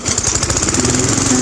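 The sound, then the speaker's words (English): A lawn mower engine sputters to life outside and settles into a loud, steady, rattling drone as someone starts mowing the lawn, with no voices. “Outside, I think I'm going to start mowing the lawn.”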